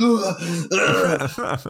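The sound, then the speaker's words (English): A voice imitates coughing and throat clearing, a quick run of rough, voiced hacks and grunts lasting under two seconds with no clear words. “I was trying to run off the cough because I didn't want to cough on your stream.”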